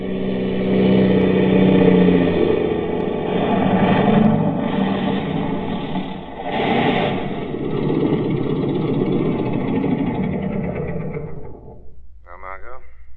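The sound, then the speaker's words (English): A propeller airplane engine drones loudly and steadily as the plane lands, its pitch wavering slightly as it rumbles along, then cuts off abruptly near the end, followed by a brief muffled sound. “They heard the plane landing.”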